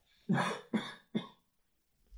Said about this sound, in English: Oh, pardon me, I'm just going to cough.